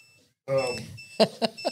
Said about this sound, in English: oh, it's that stupid alarm again.